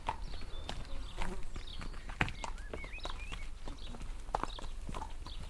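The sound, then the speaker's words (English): Horse hooves clip-clop at a steady walking pace as a horse-drawn delivery cart rolls along with a low background rumble, while faint birds chirp now and then. “If you needed a delivery, well, then you would listen for the cart that would be coming with its horses, you know, and you'd know the kind of sound that you'd be listening for.”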